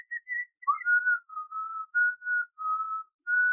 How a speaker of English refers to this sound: I learned how to whistle wrong. No. I learned how to like, I can whistle indefinitely without having to take a breath.